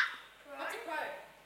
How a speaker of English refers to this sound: It's got to be a crow, doesn't it? Yes.